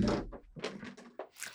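A pen gets knocked over: a dull thunk, then a few light, uneven clattering knocks as it tips and settles, all fairly quiet with no voices.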